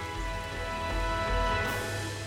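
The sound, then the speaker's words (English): A steady, dense hiss of heavy July summer rain pouring onto concrete pavements by the Union Canal, continuous, with a faint low hum underneath and no voices. “I set off in the drizzle, and before long, the dreary concrete pavements were alive with movement, as a torrent of precipitation set all surfaces alight with a sort of visual music.”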